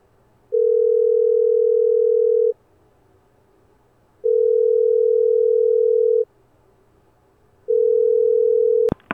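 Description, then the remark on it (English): A phone line ringing through the earpiece as a woman places a call: three long, steady electronic tones, each about two seconds with short pauses between, ending in a sharp click as the call connects to voicemail. “She prays as the phone rings.”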